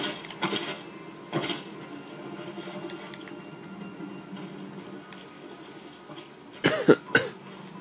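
A man coughs several times: two isolated coughs early on, then a quick burst of two or three harsher coughs near the end, over a quiet rustling background.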